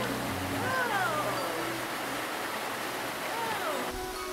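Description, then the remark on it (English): A waterfall and flowing stream water rush in a steady, continuous wash of noise, fairly loud, with a few faint whistling chirps drifting over the top, on a hot summer day; the water below is deeper than a person's height. “you were standing under this waterfall that we're just about to see now”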